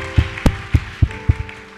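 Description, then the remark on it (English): Clapping for a girl in a steady, even rhythm, about six sharp claps in under two seconds, with a faint sustained tone humming underneath and no talking. “Clap for this beautiful girl.”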